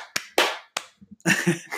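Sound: two hand claps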